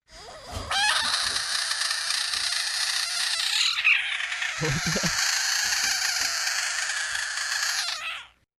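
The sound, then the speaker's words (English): A loud, sustained screech from a screeching frog from Florida, harsh and raspy, holding steady for about seven seconds with a brief break in the middle before trailing off. “Do you know what a screeching frog sounds like?”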